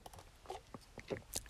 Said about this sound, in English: I'm going to take a little sip of coffee in the morning.